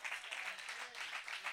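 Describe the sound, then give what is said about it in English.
A crowd claps together during a sermon in a steady, dense wash of applause that fills the short moment, fairly soft, with a faint voice underneath. “Somebody clap today.”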